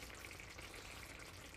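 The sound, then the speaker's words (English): A pot of curry made with heavy cream simmers on low with the lid off, with a steady, soft sizzling hiss and faint bubbling, continuous and even in loudness throughout, with no voices. “So I think I'm going to take the lid off, put it on low, and it'll simmer and maybe thicken up.”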